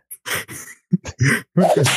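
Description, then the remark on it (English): A voice imitates whip cracks, making a quick series of hissing, snapping bursts, some short and some drawn out, with brief pauses between them. “I have a whip as well.”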